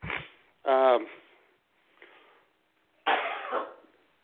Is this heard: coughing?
yes